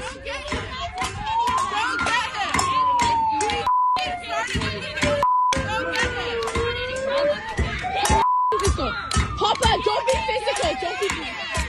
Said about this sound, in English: That's a megaphone siren. Oh, it is. I thought it was the police.